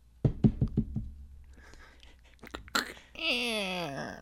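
knocking on a door

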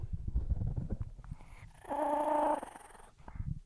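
dog growling

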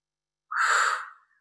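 yawning

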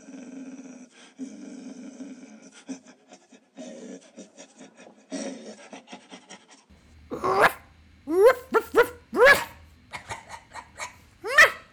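dog barking sound effect

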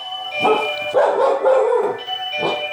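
dog barking

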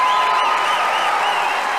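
applause

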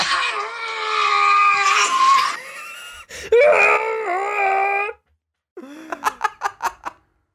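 man screaming loudly

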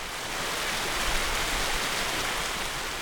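waterfall splashing

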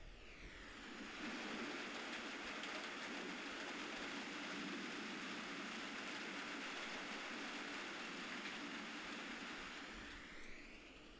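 rain falling

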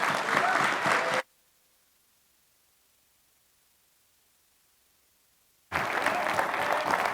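audience applauding

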